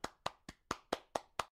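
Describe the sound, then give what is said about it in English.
A single pair of hands claps seven times in a quick, steady rhythm, each clap sharp, with no voices and brief silence between claps. “We thought we'd introduce a new segment to our show. It's called Round of Applause.”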